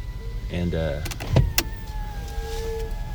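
A minivan starting to pull out of a driveway, heard from inside: a steady engine hum with a faint whine, a short motorized whir and a few sharp clicks and thumps near the middle.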